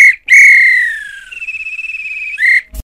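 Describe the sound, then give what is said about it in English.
A referee's pea whistle blows loud at the end of a match after extra time: a short blast, a long trilling blast, then a final short blast, sounded alone with no voices. “This is when the ref blew the whistle because it's finished.”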